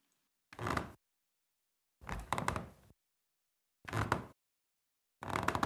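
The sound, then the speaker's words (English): Wooden stairs creak and thump under someone walking down, four separate steps at a slow, steady pace, with quiet between each one. “And that's the noise they make each time I go down them.”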